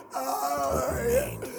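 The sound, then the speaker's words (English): A man lying by a burning fire groans and gasps in pain, strained voiced moans rising and falling over about two seconds, fairly loud with no words spoken. “Ben is lying there, panting in agony by the burning fire.”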